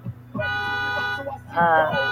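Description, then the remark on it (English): Two loud, sustained car horn blasts sound in street traffic, the first long and steady, the second shorter and brighter, with a low rumble of vehicles underneath. “There it is, that stuff that you're gonna hear in the bus, that traffic and everything, and I love it.”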